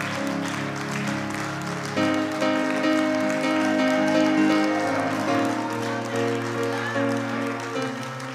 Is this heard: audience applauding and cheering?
yes